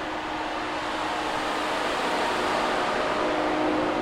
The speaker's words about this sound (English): You can hear how hot it is right now out here. Yeah. The only thing you hear on this truck ever really is just the fan. For the heat exchangers? It's for the radiators, the batteries.